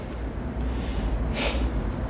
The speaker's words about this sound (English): is the sound of me breathing here in Seoul, 9:22 in the morning on Monday, February 27th. I'm here alone at the Hye Hwam Un Gate.